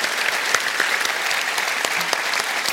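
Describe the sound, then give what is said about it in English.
Sustained applause from a large audience at the McEwen Hall, dense overlapping claps at a steady, fairly loud level throughout, with no voices standing out. “please a round of applause to everyone here at the McEwen Hall and at Avalon who made tonight possible.”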